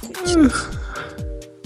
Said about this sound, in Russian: Я уже зеваю.